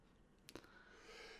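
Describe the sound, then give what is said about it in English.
A single sneeze: a short catch of breath, a rising drawn-out 'ahh', then an abrupt loud burst at the end. “Ooh, Gesundheit.”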